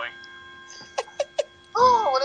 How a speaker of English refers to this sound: This thing's gonna ding eight fucking times. It's 9 o'clock.